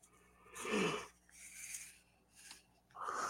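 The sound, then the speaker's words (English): A breathy yawn: a drawn-out voiced inhale that swells and fades, followed by a few softer airy exhales. No speech. “You yawned as you were saying, it's fine.”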